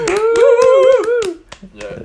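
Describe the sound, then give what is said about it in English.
Quick, sharp hand claps, played as audience-participation clap noises to welcome a guest, repeat at a fast, steady pace. A sustained, wavering vocal cheer rides over them for the first second before the claps continue more sparsely. “I feel like we need some like some clap noises or some like audience participation.”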